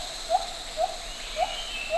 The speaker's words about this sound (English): That's the sound of a white-handed gibbon, a type of small ape. We look at rhythmic patterns produced by individuals, and what we see is a strong presence of temporal regularity.